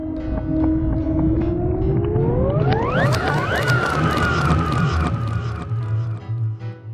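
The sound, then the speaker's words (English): A loud, siren-like wail sweeps steadily upward in pitch to a shrill peak, then holds high and wavering over a low, rumbling background before fading slightly. “The siren-like wail was growing louder and louder, and Drew had to cover her ears.”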